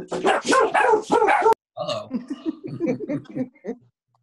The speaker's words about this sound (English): Well, the dogs barked.